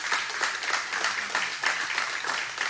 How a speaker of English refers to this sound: So I think let's just give the biggest round of applause to our military and the ones who have died in serving this country.